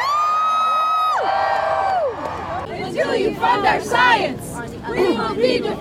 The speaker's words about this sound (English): Have a big round of applause for staying with us through this rain. I can still see people screaming into the mall. It's incredible.